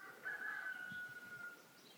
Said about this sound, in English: And I'm going to go on a little tour of the village as the birds wake up and mark the change from night to day.